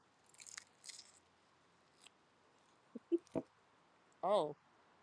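Crisp crunching of someone biting and chewing a rice cake topped with peanut butter and pickles, a few brittle bursts followed by softer chews, then a brief murmured vocal sound near the end.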